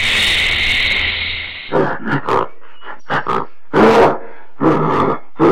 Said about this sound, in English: followed up by some gorilla-type sounds that are actually pinging between the two speakers, which was kind of an interesting type effect, I thought. And here are those very animal sounds, separated out from the final mix.